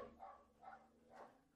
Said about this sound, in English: And my dog's barking. Can you hear him?